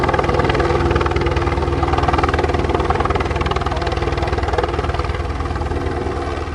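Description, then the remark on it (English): A helicopter carrying tiki birds to a sanctuary comes in to land, its rotor chopping in a rapid, steady rhythm over a loud, continuous engine whine, easing off slightly toward the end as it settles down. “And now we got to wait for the sound of the helicopter to bring the tiki.”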